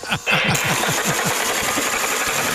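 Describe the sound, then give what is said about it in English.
A model train locomotive and tender, from a set with a display case bought 21 years ago, runs on a track that goes nowhere, through a tunnel, with a steady, rapid mechanical chugging and a loud, buzzy motor whir, its rhythmic clatter repeating quickly over a hissing background. “I got a train that goes nowhere.”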